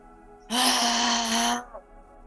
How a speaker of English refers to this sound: And just go on 2-3 more times. Okay. Deep breathing.